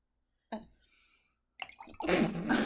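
White wine is poured into glasses: a brief knock and a faint rustle, then a steady, splashy gurgle of liquid filling a glass that runs to the end. No one speaks.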